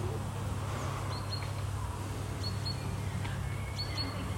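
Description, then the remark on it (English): A bird sings in short, high, paired chirps that come three times over a few seconds, fairly faint, above a steady low outdoor rumble, on an early spring evening in England. “A lovely one, early evening spring bird I can hear.”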